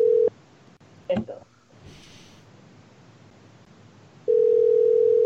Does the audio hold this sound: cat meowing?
no